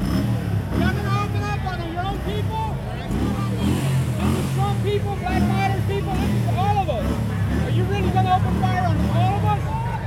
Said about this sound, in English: There's a man in the street with a motorcycle. He is revving.